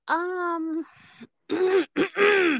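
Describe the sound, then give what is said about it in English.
A single person clears their throat before speaking, with a drawn-out voiced rumble followed by a few rough, gravelly bursts, all alone with no talking. “Clear my throat.”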